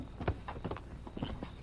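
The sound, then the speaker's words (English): Footsteps of the Lone Ranger and Tonto, dismounted, walking forward on foot toward the rim of a canyon at an unhurried, fairly even pace, about half a dozen soft steps on rough ground, quiet, with no voices. “They dismounted and left the horses in a clump of trees and went forward on foot.”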